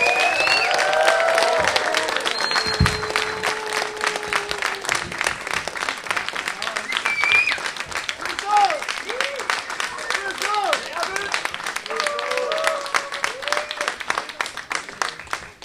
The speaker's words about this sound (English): So, …, you want to come on out? Everyone give a big round of applause for ….